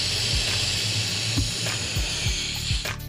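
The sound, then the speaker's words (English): Someone blows steadily into a balloon, a continuous breathy hiss of air, with soft low thumps and puffs recurring throughout. “You've not blown up the balloon yet. No, I'm going to blow it up.”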